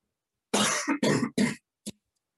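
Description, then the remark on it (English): A person coughs three times in quick, harsh succession, then gives one short, softer cough after a brief pause. The coughing is loud, with no talking. “One of them coughs.”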